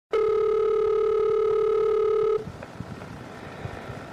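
A loud, steady telephone line tone holds for about two seconds, then cuts off abruptly, leaving faint crackly line noise with scattered soft clicks, at the start of a recorded phone call from an original police case file.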